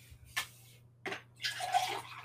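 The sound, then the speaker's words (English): Water is poured into a glass to drink: two short splashes, then a steady stream lasting about a second. It is fairly quiet, with no talking. “I'm going to drink some water and then we can put them into the maker.”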